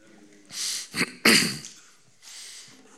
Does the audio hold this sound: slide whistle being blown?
no